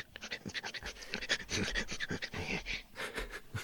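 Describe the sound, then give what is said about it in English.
Quick, breathy sniffing in a fast uneven rhythm as the character Toe Cutter slowly closes in on a woman's ice cream, dozens of short huffs running together like an animal's eager panting, fairly loud and steady for the whole stretch with no talking. “Do you mind if I slowly get closer to your ice cream with a weird sniffing?”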